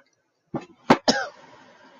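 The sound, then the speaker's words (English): A person with a lingering cough gives three quick coughs in a short burst, the last one trailing into a rougher, throaty tail before fading to quiet background noise. No one speaks. “Sorry, I have a lingering cough from I don't know what.”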